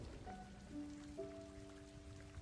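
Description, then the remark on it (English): Steady rain patters on a hard surface in a soft, continuous hiss, with low sustained musical tones drifting underneath; no one speaks. “On that windy evening, when I was soaked in rain, I bumped onto him out of nowhere.”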